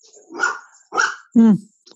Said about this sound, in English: And Gallifrey is going to bark. Oh, Gally. Little Gally. Gal pal.